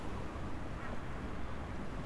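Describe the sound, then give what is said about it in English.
A dense chorus of seals at their rock settlement barking and honking, with many rough, overlapping calls forming a steady, loud din and no pauses, over a faint wash of water. “You'd think this would disturb them, but on those days, I can hear the seals barking and honking even more than normal.”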